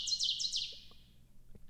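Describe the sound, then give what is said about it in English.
A bird call: a quick run of four bright, high-pitched chirping notes in the first second, fairly clear, trailing off into near silence with faint background hum. “Obviously, this is a bird call.”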